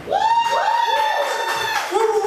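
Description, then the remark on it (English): An audience cheers and whoops, several raised voices overlapping in sustained, rising and falling shouts for about two seconds, with little sign of clapping underneath. “Round of applause for actually heard the show.”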